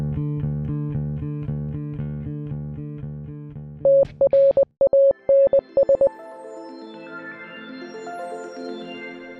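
An electronic song with a pulsing, buzzy synth bassline gives way to a run of loud staccato hits, then swells into bright, layered synth chords. No singing.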